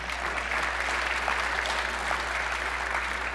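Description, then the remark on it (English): A crowd at a Republican political gathering applauds the party flipping the House and firing Nancy Pelosi, a dense wash of many hands clapping at an even level throughout, with no voices standing out. “We can all applaud for that, right?”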